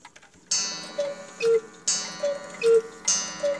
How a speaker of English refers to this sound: Looks like the clock part is still keeping the correct time, 5:59. Now, let's see how the cuckoo sounds.